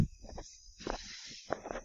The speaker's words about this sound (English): Some guy is shoveling his driveway next door.